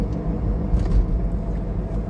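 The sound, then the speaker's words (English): Steady low road rumble from inside a car driving to Starbucks, a dense continuous drone with slight swells, fairly loud, with no voices. “And I'm in the car, and I'm on my way to Starbucks.”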